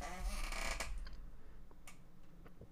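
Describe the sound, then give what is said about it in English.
A broken chair creaks and squeaks loudly at first, a dense grinding creak for about a second, followed by a few fainter, scattered squeaks and ticks as it settles. “And I apologize for the squeaky chair. My chair is still broken.”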